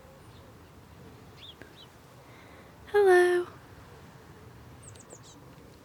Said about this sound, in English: I love hearing the birds tweet in these hedgerows. So sweet.